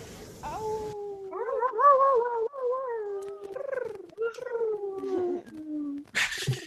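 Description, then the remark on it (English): Several people, unmuted on a group call, imitate animal noises together as a goodbye, mostly long wavering howls like wolves or dogs, overlapping, ending with a short burst of noisier calls. “So just inviting everyone, we're going to unmute ourselves, and let's all make some more animal noises and send everyone some love, and we'll say goodbye after that.”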